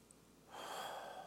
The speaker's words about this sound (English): If you can take a big breath, it's called 4x4 breathing, 4x4. Breathe in through the nose, hold 4 seconds.